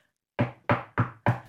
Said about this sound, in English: Knock, knock, knock at the door. It's one of the kids.